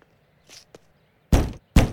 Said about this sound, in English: After two loud knocks went unanswered, he walked around the house to the back door. He knocked again.